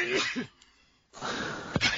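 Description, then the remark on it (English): An abrupt sneeze: a short breathy intake, a brief pause, then a loud explosive burst of air with a sharp peak near the end. No speech is heard. “I just muted to sneeze, too”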